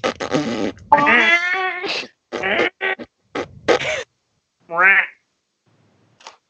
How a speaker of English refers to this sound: This van farts. It sounds like a duck when Gran farts.